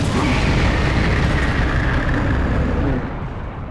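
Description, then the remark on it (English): A loud, sustained roaring blast with heavy low rumble, a rocket fired at the Nemesis and exploding, holding steady for several seconds before easing off slightly at the end. “The rocket stuns the nemesis, but probably for a while.”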